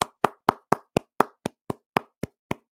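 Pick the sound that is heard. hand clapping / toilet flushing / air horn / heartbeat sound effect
hand clapping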